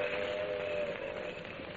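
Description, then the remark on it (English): An approaching steam train rumbles steadily, a dense hissing, chugging roar with a faint sustained whistle-like tone running through it. The noise stays fairly constant and fills the short moment, with no voices. “When is that train coming in”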